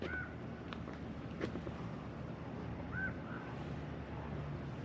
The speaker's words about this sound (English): Right now, all I hear are birds.